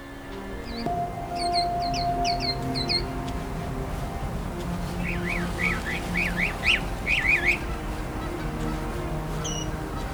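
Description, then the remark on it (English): A mockingbird sings at Bayfront Park in Hamilton, Ontario, switching songs and calls in rapid succession: sharp chirping notes, then a run of repeated rising whistles and back, over a steady low background hum. “It's usually easy to pick out a mockingbird singing, as it tends to switch songs and calls in rapid succession, and at peak times will belt these vocalizations out very loudly.”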